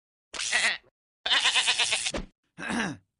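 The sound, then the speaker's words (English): Three bleats from a sheep, fairly loud, each a wavering, quavering cry with short pauses between; the middle call is the longest, and no one speaks. “Does Pa know that Cooter's girlfriend is a dead sheep hooked up to a car battery?”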